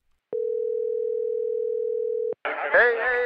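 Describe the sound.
A steady telephone dial tone hums for about two seconds as a call is placed, then cuts off abruptly; a voice begins talking right after.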